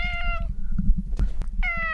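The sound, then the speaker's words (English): A pet cat, coaxed by its owner to speak, meows twice, with a pause between the drawn-out, harmonic cries and a low rumbling background underneath; no one speaks. “And I'm just going to try and get my cat to speak to you very quickly.”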